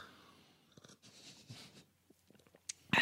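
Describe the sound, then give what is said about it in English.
Wet slurping sips of a drink, a few breathy, hissy pulls with small mouth clicks between them, ending in a sudden louder slurp. No talking. “Fuck, and don't sip like that. That's really loud.”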